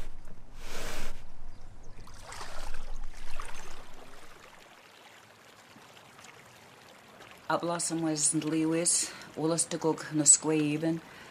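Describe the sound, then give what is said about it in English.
A large canoe scrapes and grinds as it is dragged to the water of the Wollastook river in three rough, noisy pulls, then a lull with faint water sounds before people start talking. “The canoe is so large it has to be dragged to the water.”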